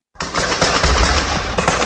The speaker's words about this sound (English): Then this gunfire erupted as the suspects and police shot at police and police returned fire.